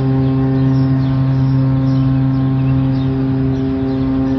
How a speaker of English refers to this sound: Bihar says the foghorn would blast consistently, reliably, and in two tones whenever there was low visibility. These days, he still hears foghorns, but much less frequently and only in a one-tone pitch, like this.